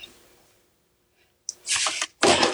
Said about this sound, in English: Bless you.